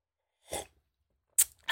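Someone sips black tea with no sugar or milk from a cup: three short, airy slurping bursts separated by brief silences, the first one softer, with no talking.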